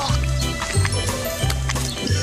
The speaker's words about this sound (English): Oh, she's chewing the milk.